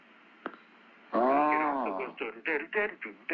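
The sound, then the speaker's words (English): A soft tap, then bright harmonic tones from a Minimoog keyboard played through an echo set to sound like a sequencer, blooming and repeating in quick rhythmic echoing pulses, fairly loud. “But I set the echo in a way where it sounds like a sequencer.”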